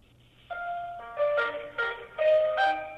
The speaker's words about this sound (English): Okay, so there's hold music and there's a phone tree. This all feels very like the most normal thing in the world.